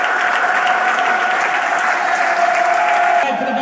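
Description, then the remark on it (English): A large stadium crowd applauds Lions legend Paul Robinson shortly before kickoff, a dense, loud wash of clapping that holds for several seconds without letting up. “Fantastic round of applause from the whole stadium for Lions legend Paul Robinson.”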